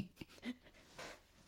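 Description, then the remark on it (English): Bear, a cat, sneezes softly, a few short breathy bursts with a sniffly exhale between them, quiet with no voices. “Is that bear sneezing?”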